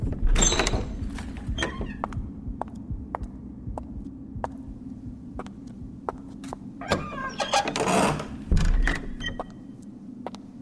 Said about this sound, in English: I ran quickly up the steps and threw open the door.